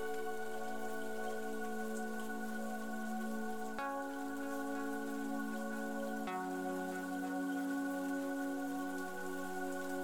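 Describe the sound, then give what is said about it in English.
Steady rain hisses evenly throughout, softly blended beneath a sustained, humming musical drone that shifts pitch twice. No one speaks. “Mindful Meditation: Cleansing Rain”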